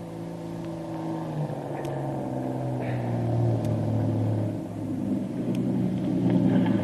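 A motor launch's engine chugs steadily as it warps into the dock in front of Doc Beard's plantation home, a continuous low rumble with slowly shifting tones and faint rattles, rising slightly near the end; no one speaks.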